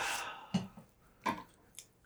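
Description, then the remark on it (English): A faint sip of coffee: a soft hissing slurp, then a few brief wet mouth and swallowing sounds spaced out over two seconds, with no talking. “Sorry, I just took a sip of my coffee.”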